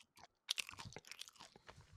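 A person imitates chips being eaten with their mouth: a quick burst of sharp, crackly crunching and chewing noises, loud and irregular, lasting a couple of seconds after a brief pause.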